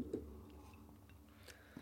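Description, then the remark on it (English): A small, quiet sip of whiskey, with a few soft slurping and wet mouth sounds spaced out over a couple of seconds and no talking. “So little sip.”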